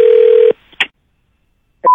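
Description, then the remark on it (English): A telephone line hums with a steady dial tone that cuts off, followed by a brief clicking burst of dialing as a prank call is placed to a big equipment rental company, and after a pause, a new tone starting up. No one speaks. “and today we're calling a big equipment rental company to see if I can get them to rent me some equipment to use on my new reality YouTube game show, you know, like a Jackass ripoff.”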